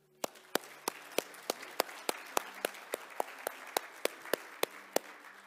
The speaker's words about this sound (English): Let us give God the praise through our applause of how God used us this year.